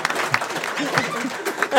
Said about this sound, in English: We need an applause sign. Totally. Clap now.